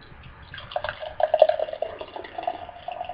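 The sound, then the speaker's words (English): Pitch-black beer pours from a 32-ounce (one quart) crowler can into a cup, a gurgling, splashing stream that starts after a brief pause and runs steadily for a couple of seconds. No one speaks. “Ooh, good pour on that one.”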